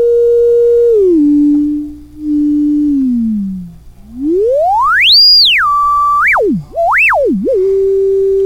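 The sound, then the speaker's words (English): A self-oscillating diode ladder filter whistles on its own: a pure, loud tone holds steady, slides down, then sweeps high and swoops up and down several times over a faint low hum. “All right, and then the last thing I was going to talk about that I used it's sitting there humming away, whistling I should say.”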